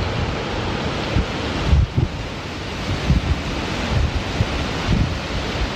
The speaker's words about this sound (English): I mean, it's pretty powerful. You can just hear that wind gusting constantly. Definitely strong. Could end up pushing your car around if you're driving into work, so be careful.